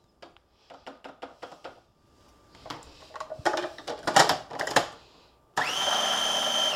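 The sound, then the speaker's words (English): A series of quick scraping taps and rattles as a rubber scraper pushes sugar from the sides down into eggs in a food processor, which then switches on with a loud, steady whirring whine that runs without a break to the end. “I'm going to use a rubber scraper to scrape the sugar that splashed up on the sides down into the eggs and spin it one more time.”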